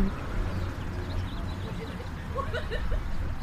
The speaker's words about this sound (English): Dang, why are the birds so loud? Because your thoughts are so quiet. Yeah. I feel like they're celebrating. You hear them too?